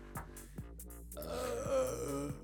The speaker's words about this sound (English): Damn, that's hard to choke down, dude. Did it. Fuck. I had to take a break to do the burp situation.